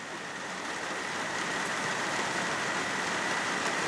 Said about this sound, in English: So the rain started late last night and it has not stopped, and it's bloody awesome.